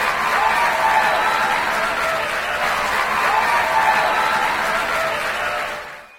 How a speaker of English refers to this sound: Ladies and gentlemen, with a standing ovation and a round of thunderous applause, let us welcome the ministration of the man appointed and anointed by God for your miracle for this service